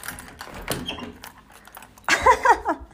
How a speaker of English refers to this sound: Oh, hello, door.